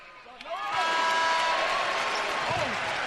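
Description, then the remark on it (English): A basketball arena crowd at a BYU versus UCF game erupts into loud, sustained cheering after a BYU basket. The cheering swells within a second and holds steady, with shouts and whistles rising over the roar and sneaker squeaks faintly audible beneath. “We'll let the crowd tell you.”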